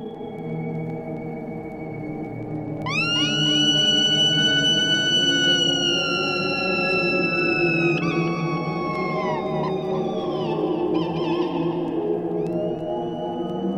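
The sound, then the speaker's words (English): Eerie seagull- and whale-like cries glide and bend in long, high tonal sweeps, repeating over a sustained, droning low musical bed; no voices, just spacious, steady, moderately loud textures. “So with that, let's move on to the next part, the seagull and whale noises.”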